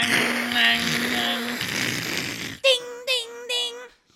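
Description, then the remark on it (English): A voice imitates the AOL dial-up modem startup sound: a long hissy, screechy static-like noise with a steady underlying tone, followed by three short, pitched, beeping vocal bursts. “They use dial-up, I heard. Yeah, I heard the AOL startup thing.”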